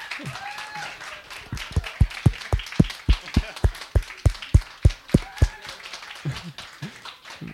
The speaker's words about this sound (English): Stand up and let's give him a clap.